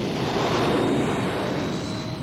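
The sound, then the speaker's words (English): Luke's starfighter engines roar to life in a loud, steady, rushing whoosh with a low rumble underneath, easing off only slightly as the craft flies away. No voices are heard. “Then Luke climbed into his starfighter, fired up the engines, and flew away.”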